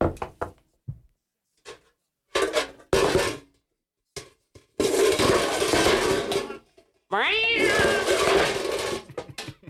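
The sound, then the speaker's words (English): Cats in an alley yowl and screech in long, rising wails, broken up by sharp metallic clatters and bangs of garbage cans being knocked about, all loud with no one speaking. “We've got some garbage cans there. Cats in the alley.”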